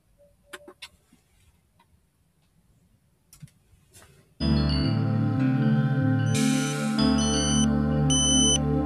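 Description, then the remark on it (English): Quiet ticking and small clicks for a few seconds, then a morning alarm clock suddenly goes off: a loud electronic tune of steady, shifting beeping tones that keeps sounding until the end. “you'll hear her getting up, or her alarm going off, and her not getting up, sorry,”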